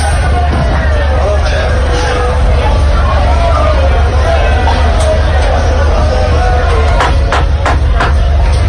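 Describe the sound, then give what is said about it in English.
A dense, loud hubbub of partying fans in red and white jerseys, some topless, crowded around a bus that cannot move, with overlapping voices and shouts heard steadily from inside the bus over a low engine rumble, with a few sharp bursts near the end. “party going on, and it's a sea of red and white jerseys.”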